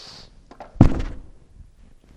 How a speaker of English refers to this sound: How do you knock? No, that's how you knock when you hope nobody's home. Right?